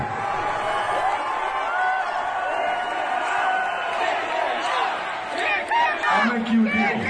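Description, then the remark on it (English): A concert crowd shouts and roars continuously, many voices blending into a dense, steady wall of noise, with sharper individual yells surging louder toward the end. “This is a goddamn concert.”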